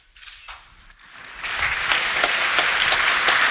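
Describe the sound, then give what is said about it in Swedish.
An audience at a ceremony breaks into applause as a woman takes her diploma and returns to the front row, starting as a few scattered claps and swelling within a second into a loud, dense, steady wash of clapping that holds to the end, with no talking. “Publiken applåderar högt när hon tar sitt diplom och återvänder till den främre bänkraden.”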